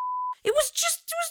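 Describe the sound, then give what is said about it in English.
A steady, pure-tone censor bleep lasts about a third of a second, cutting off abruptly before a voice continues speaking. “Sorry, I know you have to beep all that.”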